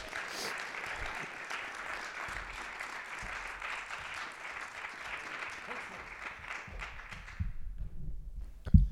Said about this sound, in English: Keep it going. Keep the applause going. Yes.